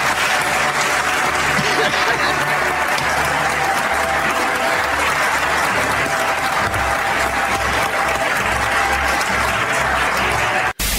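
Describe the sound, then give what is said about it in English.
A large audience gives a loud, sustained standing ovation, lasting more than a minute, applauding themselves and their statewide partners for a job well done. Dense clapping holds steady the whole time with a faint murmur of crowd voices underneath, before cutting off abruptly at the end. “They gave themselves more than a minute standing ovation.”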